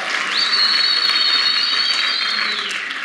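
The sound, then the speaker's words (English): An audience breaks into sustained applause, a dense wash of clapping from many hands filling the room, with a steady high whistle-like tone running through most of it. “Now you can clap.”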